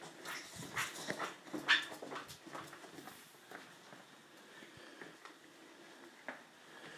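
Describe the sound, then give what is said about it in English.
A dog whimpers and whines softly in short, uneven bursts, with faint shuffling movement around it and no one talking. “No! No, dog. Get thee to a doggery.”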